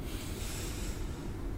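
A long, steady breath drawn in through the nose during a mindful breathing exercise with eyes closed, fairly quiet, a continuous airy rush lasting over a second with no talking.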